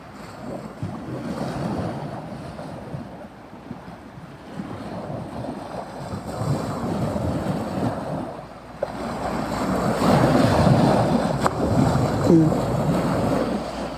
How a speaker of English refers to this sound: The voice of the ocean is so powerful.